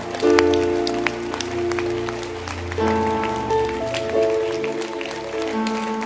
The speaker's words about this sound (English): Clap for them. The hand clap is weakening and waning in its intensity.